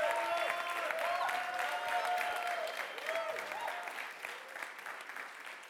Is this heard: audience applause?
yes